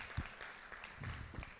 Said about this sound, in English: Okay, can we give them a clap? Well done for collecting hearts. That was awesome.